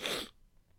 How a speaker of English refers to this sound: That was not a COVID sniff, by the way, nor was it a COKEvid sniff. I don't do the coke.